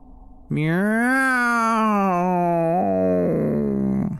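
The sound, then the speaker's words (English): A single long, drawn-out meow, loud, wavering slightly and shifting pitch near the end, most likely a human voice imitating a cat, for two stray cats on a back porch at dusk. “Meow!”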